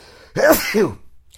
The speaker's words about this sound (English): God bless me. I had to sneeze.